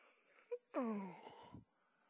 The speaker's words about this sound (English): Oh, Mom, it's Sunday. I'm tired. Let's just go to pajama church. Yawn.